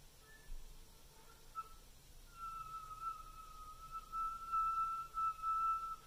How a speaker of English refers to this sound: But once you can get a whistle tone on a note, what you're going to do is alternate between the whistle tone and the full tone of that note, trying to play the note softly.